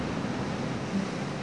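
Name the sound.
ocean waves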